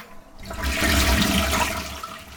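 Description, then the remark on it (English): A toilet flushes: a sudden loud rush of water that swells quickly and keeps churning steadily for about two seconds, with no voices over it. “Yeah, let me go ahead and flush that one.”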